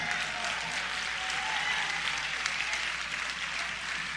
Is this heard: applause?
yes